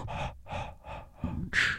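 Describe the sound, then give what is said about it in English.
A voice imitates heavy breathing: four rhythmic, breathy huffs in quick succession, ending in a louder, sharper gasp. Fairly loud, with no words spoken. “I was like, bro, are you breathing heavy during the promo?”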